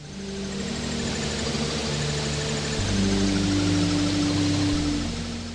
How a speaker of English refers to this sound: that background sound is more rich, broadband, wideband sound, noise-like sound, but it actually sounds a bit like music